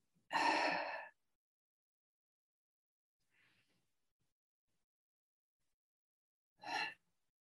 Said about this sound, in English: And we're box breathing in order to stay calm, curious, interested in our bodies. We want to inhale information and let it go.